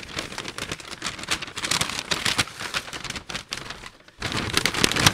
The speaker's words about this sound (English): I'm rattling the paper for effect, by the way, just so you know. I'm not fighting the paper.